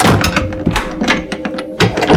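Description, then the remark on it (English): A heavy laboratory door slams shut, followed by a quick series of loud thunks and metallic clunks as the tumblers in its locks tighten shut, with no voices. “the door to the laboratory slammed shut, and McCallan heard the tumblers in the locks tighten shut”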